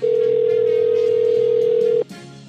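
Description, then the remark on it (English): A phone line ringing: one steady, mid-pitched electronic ring tone holds for about two seconds at an even level, then cuts off and leaves a low, quieter hiss. “All right, let's ring Andy Pohl and see what he's up to tonight.”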